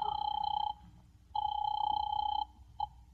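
A telephone rings over a phone line, heard as two long, steady electronic rings separated by a pause, then a brief blip of a third, thin and filtered over a low background hum.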